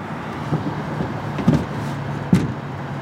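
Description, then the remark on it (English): A few muffled thumps and shuffling knocks as a man gets into the back seat of a car and settles in, over a steady low vehicle hum. No one speaks. “No, he's getting in the car.”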